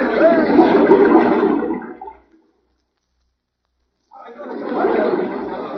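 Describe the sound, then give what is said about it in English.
A rushing waterfall roars loudly and steadily, drops to silence for about two seconds, then surges back in just as strong. “Jim's coming from behind the waterfall now, Sheriff.”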